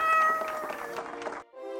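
A cat lets out a long, loud, drawn-out meow, then a brief pause and a shorter second meow. No one speaks.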